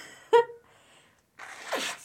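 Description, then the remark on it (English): A short nasal honk, then a longer breathy, rushing blast of air from the nose, like someone blowing their nose into a tissue. No talking. “I just had to blow my nose.”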